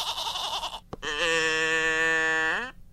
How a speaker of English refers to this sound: In fact, you were just playing with your goat machine over there. It's a cow machine, the captain of winning.